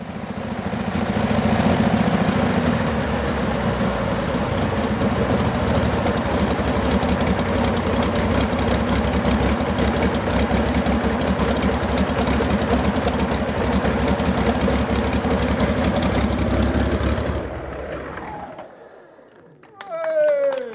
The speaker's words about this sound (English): So we've just had the second Merlin engine run